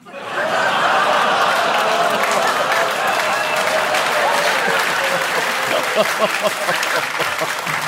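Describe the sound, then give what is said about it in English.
A live audience applauds steadily for several seconds, the dense clapping mixed with scattered boos and murmuring voices from the crowd, loud throughout, reacting to a quiz answer about the red in Nova Scotia's provincial tartan. “Oh, some people are clapping, some are booing, some are clapping and booing, which I admire.”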